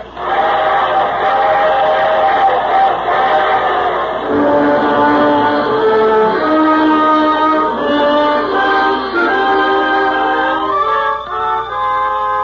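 A freight train runs loud on the rails, its steady rumble overlaid with long, shifting metallic whistling and screeching tones for the whole stretch, with no voices.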